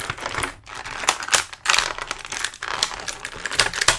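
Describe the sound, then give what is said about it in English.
Stiff plastic packaging of a toy figure crinkles and crackles continuously as the figure is taken out, with dense irregular snaps and rustles rising and falling in loudness, briefly pausing a few times. No one speaks. “Did you enjoy that crackle, listeners? I hope you did. It's like a nice warm fire.”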